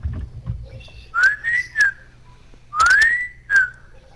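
A person whistles two short rising-and-falling phrases, each a quick run of clear, bright notes, loud over a low background rumble, with no talking.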